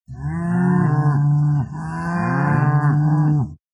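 Two long, loud cattle moos sound back to back, deep and drawn out, alone with no talking.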